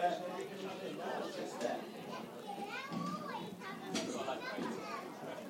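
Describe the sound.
A good crowd at the Tiger Turf Stadium, watching a football match involving Bishop's Cleeve, keeps up a steady, lively murmur of overlapping voices, with higher children's shouts and calls rising above it now and then.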